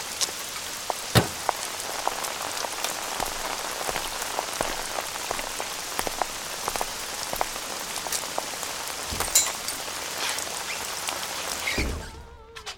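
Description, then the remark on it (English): Steady rain patters on a hard surface, a dense continuous hiss broken by sharper individual drops and drips, before fading out abruptly at the end. “As you enter the Orchard Run Gas and Diner, you see a few people keeping out of the rain.”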